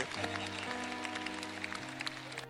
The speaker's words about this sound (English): No, those of you who don't have it, you are the ones who are not clapping because you don't know what is in the book. You, even if you don't know, just clap.